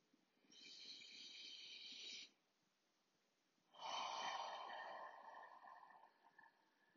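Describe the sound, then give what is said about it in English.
A slow, deep breath drawn in for a count of four, filling the belly, a brief pause, then a longer, louder exhale rushing out for a count of four as the belly deflates, during a breathing exercise. The breathing is airy, with no talking. “And you're going to count for four, and then you're going to breathe out for four, and your belly is going to deflate like a balloon losing air.”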